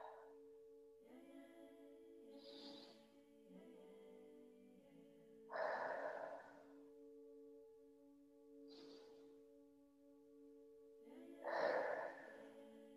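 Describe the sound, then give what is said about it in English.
Slow, deliberate breaths drawn in through the nose and released out through the mouth during a continual conscious breathing exercise, repeating in an unhurried cycle over a soft, sustained ambient music drone, with louder airy exhales. “And if it feels good to you, we're going to start some continual conscious breathing, taking a breath in through the nose and out through the mouth.”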